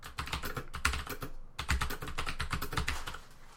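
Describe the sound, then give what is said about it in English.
Fast, steady typing on a DOS Keyboard Professional mechanical computer keyboard, each keystroke a sharp clack in a dense stream, with one brief pause partway through before the clatter resumes. “What you've heard today was the DOS keyboard professional”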